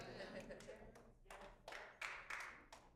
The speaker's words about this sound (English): Got one clap.